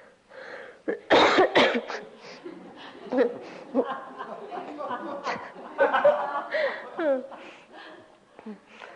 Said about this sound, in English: Maybe for you it's the coughing in the hall.